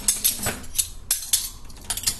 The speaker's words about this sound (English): Although I guess putting away dishes and doing dishes while I'm recording a podcast, already not the most audiophile friendly creative choice that I could be making.